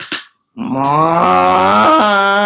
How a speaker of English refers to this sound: in Wisconsin, there's a cow. It's being milked, and it makes that sound.